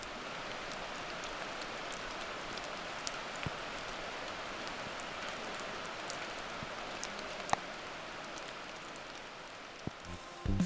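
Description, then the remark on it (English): Steady rain falls outdoors on the Rattlesnake Ledge Trail near Seattle, a dense, even hiss with scattered sharper drips and taps, continuing without pause and with no voices. “And let me tell you, even in the rain, it's a beautiful trip.”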